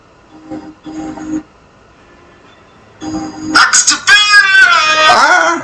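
A short snippet of a rap song plays: a few sparse low synth hits and pauses, then loud, strained, wailing vocals swell over dense music for the final seconds.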